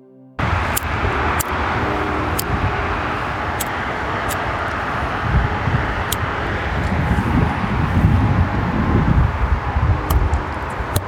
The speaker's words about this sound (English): The birds may have been welcoming us, but it was cold, windy, and impossible to light a cigarette.